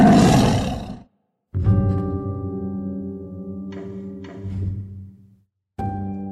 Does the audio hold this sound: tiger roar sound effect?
yes